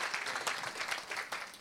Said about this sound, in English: And church, can we just put our hands together, first of all, and just cheer for these guys. Thank you so much for what you're doing. We really appreciate you.